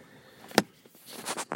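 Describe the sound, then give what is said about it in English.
A car being switched off: one sharp click, then a quiet pause and a few soft mechanical whirs and rustles from inside the vehicle. No one speaks. “All right, so I'm just going to hang out right now, turning off the car.”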